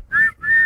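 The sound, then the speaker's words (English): Two quick, loud blasts of a whistle, each a steady high tone, the second slightly longer, with nothing else around them and no talking. “So we're gonna move into I'm blowing the whistle once they get done oogling.”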